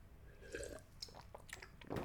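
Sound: sipping water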